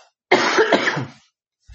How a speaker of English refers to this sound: Hold on, let me cough real quick.